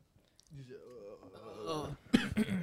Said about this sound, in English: we've been coughing for like the past 15 minutes.